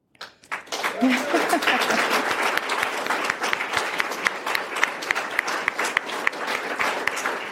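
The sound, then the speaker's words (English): An audience breaks into steady applause after an announcement that the Government of Alberta is contributing $5 million in planning funding for a multidisciplinary research hub, many hands clapping at once in a dense, sustained patter that swells quickly and holds at an even level for several seconds. “That does deserve some applause, so thank you for that.”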